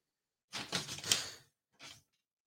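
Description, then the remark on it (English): A door being closed: about a second of rattling, scraping movement, a brief pause, then a short soft thump as it shuts. No one speaks. “Hold on, let me close the door 1 second.”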